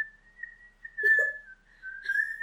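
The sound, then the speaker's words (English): A person whistles a steady, casual, nonchalant tone that wavers slightly, with a brief breathy vocal sound partway through, moderately quiet. “The nonchalantest whistle.”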